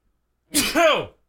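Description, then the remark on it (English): A single loud sneeze, a breathy burst that swells into a voiced "choo" and ends abruptly, with silence before and after. “But hang on, I gotta sneeze.”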